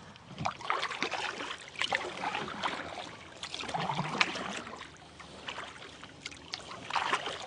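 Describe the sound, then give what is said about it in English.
Water sloshes and laps steadily against a small boat as it moves across a lake, with irregular splashes and trickles and a light breeze in the background; no one speaks. “So we're out on the water and you're just taking note of the lake depth, which looks to me to be pretty high.”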